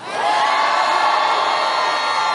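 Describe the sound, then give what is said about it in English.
A large crowd in Virginia reacting to President Biden calling Terry McAuliffe the real governor erupts in loud, sustained cheering and shouting, a dense roar of many voices that swells quickly and holds steady for a couple of seconds. “The crowds, listen to the crowd's reaction there.”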